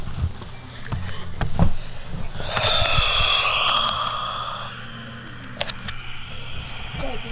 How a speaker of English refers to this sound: Stop breathing in the mic, dude.